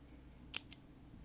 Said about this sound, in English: Scissors.